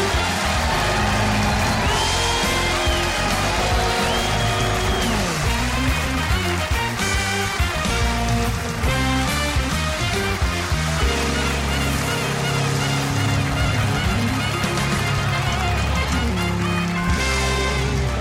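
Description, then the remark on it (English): A TV studio audience cheers and applauds loudly and steadily for about eighteen seconds as host Mike Huckabee is introduced, a dense wash of clapping and shouts over upbeat music from the house band playing throughout. “We have an amazing studio audience here. I love it when there's some excitement and energy out here in the crowd, and we have it here tonight.”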